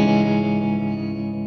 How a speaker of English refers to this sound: Getting some effects going. Yeah, I'm going chill here. A little bit of trem, a little bit of reverb.